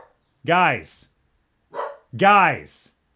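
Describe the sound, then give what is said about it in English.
Dogs bark: two loud, full barks about two seconds apart, with a shorter, softer yelp just before the second, and silence between them. “The dogs have something to say about that.”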